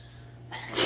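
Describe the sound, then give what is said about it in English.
A single fairly loud sneeze, preceded by a brief breathy build-up before the sharp burst at the end. No one talks. “Bless you!”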